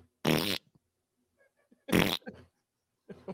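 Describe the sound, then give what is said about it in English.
Two loud, buzzy raspberry-style fart noises blown with the mouth by a man, each about a third of a second, followed by a softer sputter and a short trailing burst. “Well, the guy making the fart noises is using his mouth.”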